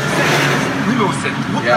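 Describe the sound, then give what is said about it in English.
Steady, loud road noise fills the cabin of a moving car driven through heavy traffic on bumpy streets in Haiti on a warm day, a constant engine and tire rumble with traffic around it, and a voice is faintly audible beneath it. “And so this is lots of traffic.”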